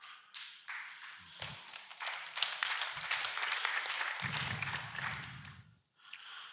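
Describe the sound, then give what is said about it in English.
An audience claps for several seconds, a dense patter of many hands at moderate volume that fades out near the end, with a low murmur underneath partway through. “Not sure how emphatic that clapping was, but that's okay.”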